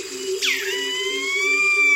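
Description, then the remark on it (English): A dense jungle dawn chorus of birds, recorded by Jean Rocher along the banks of the Kinabatangan River in Borneo. One loud call swoops sharply downward over sustained high whistles and a steady, gently pulsing low drone, with no voices. “Jean Rocher recorded this dawn chorus in the jungles along the banks of the Kinabathangan River in Borneo.”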